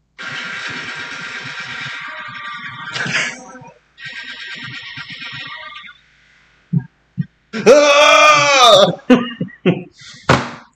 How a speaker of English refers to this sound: I don't know how well it's going to pick up, but I'd like to try and play the screams. Do it. From the end of King Kong in the 70s.